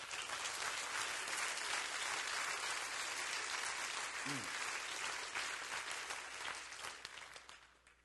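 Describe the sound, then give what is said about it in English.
A crowd claps its hands together in a dense, sustained round of applause that holds steady for several seconds before gradually tapering off toward the end. “I am a child of the King. Clap your hands.”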